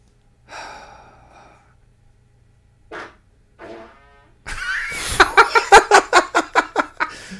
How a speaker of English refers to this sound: So, I'm gonna fart, by the way.